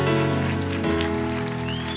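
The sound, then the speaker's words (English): A crowd at Island Church in Galveston applauds Daryl Strawberry in a dense, steady wash of hand clapping that holds loud for the full two seconds, with sustained musical tones humming underneath. “Give Daryl Strawberry, give brother Daryl Strawberry a hand clap.”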